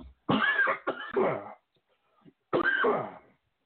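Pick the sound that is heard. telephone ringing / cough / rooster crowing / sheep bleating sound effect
cough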